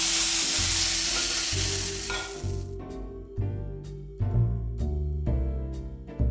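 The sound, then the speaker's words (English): Loud sizzling of tomatoes frying in a pan fades out, followed by a series of sharp scrapes and light clinks as the tomatoes and their juices are lifted out of the pan and dropped into a bowl. “The tomatoes are almost ready, and what you're going to need to do is take them out of your pan and put them in a bowl, juices included, and sprinkle them with salt.”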